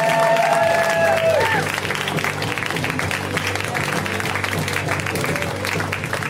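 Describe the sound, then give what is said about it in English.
A large show audience in Key West applauds loudly and steadily as comedian Cy Amundsen is welcomed, with whoops and cheers rising over the clapping in the first second or so, then a dense wall of applause continuing to the end. “How do I reward them? Like, how will I make them know that it's been a great show? Well, with claps and laughter.”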